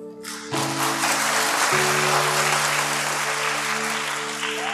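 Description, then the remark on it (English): An audience claps steadily for several seconds after the first stanza of a sung hymn: a dense, even wash of applause that swells quickly and holds, with sustained low keyboard-like chords ringing underneath. “You haven't heard me sing the second stanza, then you won't clap already.”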